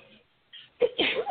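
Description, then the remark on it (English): A sudden, sharp sneeze bursts out after a brief quiet moment, a quick breathy intake followed by a loud explosive release. “Bless you.”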